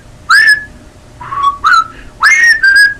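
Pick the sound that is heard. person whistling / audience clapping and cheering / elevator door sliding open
person whistling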